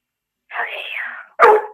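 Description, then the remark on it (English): A dog gives one sharp bark at another dog right after a long breathy, raspy huff, with nothing else around it. “That wasn't the way you just start barking at the other dog.”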